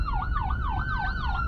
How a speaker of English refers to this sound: And the ambulance is passing.